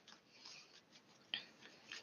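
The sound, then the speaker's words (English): Cards of a Mucha tarot deck being shuffled, a soft papery rustling with a few sharper flicks and snaps standing out, fairly quiet with no talking. “Now I'm shuffling the tarot mucha.”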